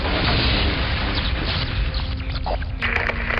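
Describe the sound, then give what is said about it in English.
A giant robot's heavy cannon blast and explosion roars through the whole clip, a dense low rumble with crackling debris and a metallic rattle near the end; no voices. “My next shot made it a moot point.”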